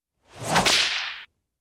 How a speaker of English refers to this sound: I tell you what, that whip crack hit a little different. Now, that whip crack just hits different. It did, that particular one.